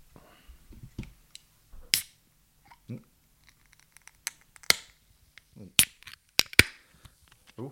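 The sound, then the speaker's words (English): A beer being opened and poured out: a string of sharp, loud clicks and metallic cracks at an irregular pace, with a few softer rustling bursts and faint fizzing in between. “But why don't we open this beer, pour it out, maybe get my energy levels up a bit, because I could use this right now.”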